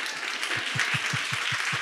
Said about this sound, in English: I love a clap.